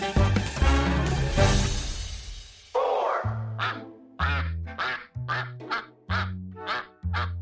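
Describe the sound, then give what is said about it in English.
A flock of around 500 Indian runner ducks, kept to eat snails at a vineyard in Stellenbosch, South Africa, quacks loudly, a dense overlapping chorus at first, then a series of distinct, evenly spaced honking quacks. “The army of around 500 Indian runner ducks has a taste for snails, making them valuable employees”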